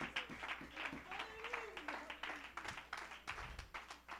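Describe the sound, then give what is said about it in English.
An audience claps hands in a dense, continuous patter of sharp slaps for several seconds, with voices calling out underneath the applause. “Somebody clap your hands and give the standard some praise.”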